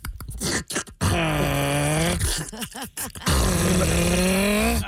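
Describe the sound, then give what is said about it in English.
Someone imitates a clicking noise with their voice: a few sharp clicks, then two long, loud, croaking groan-like sounds whose pitch wavers and slides. No words are spoken. “They make this clicking noise, like...”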